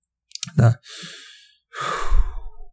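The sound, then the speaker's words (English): Heavy breathing of a person inside a space suit, otherwise silent: a sharp breath in, a soft airy exhale, then a longer, louder breath after a brief pause, sounding slightly muffled and enclosed. “it's silent, right? We hear the breathing of Cassidy.”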